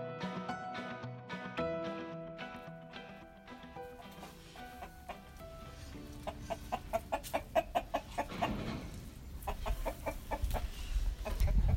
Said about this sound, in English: So that's one of our roosters. We have two pretty nice roosters here on the farm, along with about 12 hens.